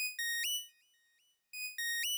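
An electronic phone ringtone plays two bursts of bright, melodic tones separated by a short pause as someone places a call, fairly loud with no voices.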